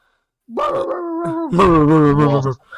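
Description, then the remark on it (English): A person imitates a dog with their voice, giving two loud, drawn-out, howling barks back to back, with no other talk. “I'm gonna bark at you.”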